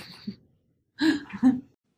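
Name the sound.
sneeze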